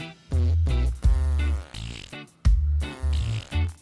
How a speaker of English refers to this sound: Listen to this. I found it the other day. It's going to get smelly in here. How weird. My youngest daughter, she was laughing so hard. Listen, we got reggae farts right here. Jamaican poots, man.